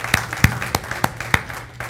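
Applause comes through as a handful of sharp, evenly spaced hand claps in a steady rhythm, about six in two seconds, over a faint low hum with no voices.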